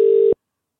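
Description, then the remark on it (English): A single short burst of a steady electronic telephone ringing tone from an outgoing phone call, loud, cutting off abruptly into silence after about a third of a second. “He normally picks up within three or four rings.”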